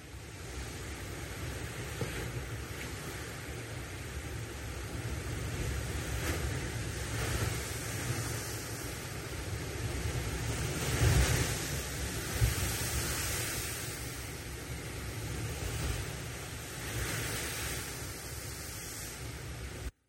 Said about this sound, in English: a video. A friend sent this to me, of a storm that was happening on the Sea of Galilee